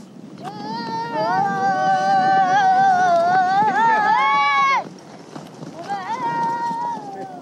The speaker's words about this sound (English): What's happening over there? The riders thunder back towards us. That little one's holding on for dear life. It's very exciting.